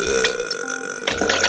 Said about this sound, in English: I can make myself burp, and it just comes out as strong.